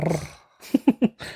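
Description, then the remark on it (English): A person imitates a dog's growl, giving three short, rough guttural bursts in quick succession after a brief low voiced sound. “That was more of a dog growl though.”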